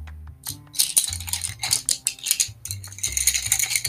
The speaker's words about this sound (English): an ASMR experience where I rustle colored pencils together for an hour and a half.